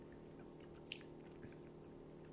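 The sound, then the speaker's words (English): Quiet chewing of a sticky yellow gummy bear, with a couple of soft squishy clicks against a steady low background hum. Nobody speaks. “Having my yellow one first, it's really sticky and gummy.”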